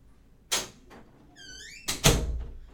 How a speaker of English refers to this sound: Okay. Let's go to this Halloween store. Open the door.